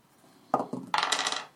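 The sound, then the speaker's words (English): Dice clatter across a tabletop: a few sharp knocks followed by a quick rattling tumble that settles after about a second. Fairly loud, with no voices. “I know, the dice hate me.”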